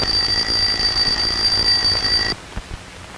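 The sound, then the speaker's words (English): An alarm clock bell rings as its hammer strikes the gong, a rapid, continuous metallic clatter with a bright high-pitched tone, loud and steady for about two seconds before cutting off abruptly into near silence. “As the hammer strikes the gong, molecules of air are set into waves or patterns of motion.”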